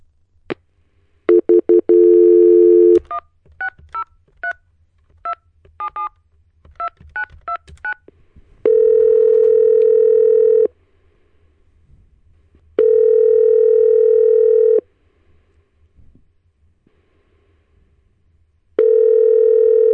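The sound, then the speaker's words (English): A telephone dial tone is followed by a quick run of keypad beeps as a number is dialed to call a man, then a steady ringback tone repeats in long, even pulses with pauses between. No one speaks. “I'm calling him right now.”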